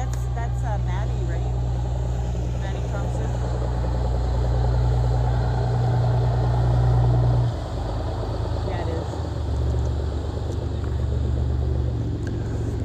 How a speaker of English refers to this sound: Thanks for being here on Trap Day. Boats are starting to come back in for their second round of traps.